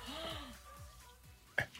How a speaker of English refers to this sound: Yep. Spicy cough.